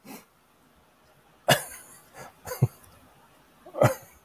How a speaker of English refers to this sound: Let me ask you a question right as you have to cough up a lung there. Yeah, no worries. I was just some candy. You know, it's sugar. Gets up your nostrils.